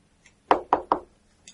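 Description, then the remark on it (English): Three quick, evenly spaced knocks on the door of an inn, fairly loud, with nothing else going on around them. “No need. Just the door's open, yeah.”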